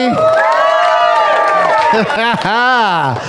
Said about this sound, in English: Fired up crowd. Let's get my notes out. Let's read to this fired up crowd.